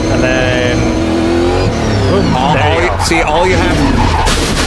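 A race car's engine revs loudly and unevenly, pitch sweeping up and down, as tires squeal and skid while the car spins off the track a quarter lap out of the pits during qualifying, the roar continuous throughout.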